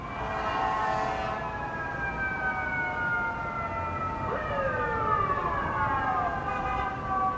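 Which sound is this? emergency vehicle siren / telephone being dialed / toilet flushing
emergency vehicle siren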